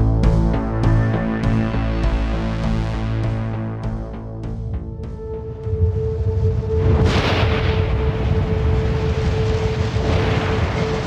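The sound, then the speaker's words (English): A heavy storm rolling in fast, with lightning and deep, rolling thunder: a continuous low roar and booming rumbles, then a sharp, loud crack that bursts into a hissing wash, with a steady droning tone underneath. “Storm rolls in fast, a seething mass of darkness, punctuated only by sharp stabs of brilliant blue lightning.”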